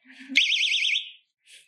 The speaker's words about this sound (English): I'm going to show you what to do if you got separated from your family or you feel afraid. This is a safety alarm. If you're feeling scared, pull it like this.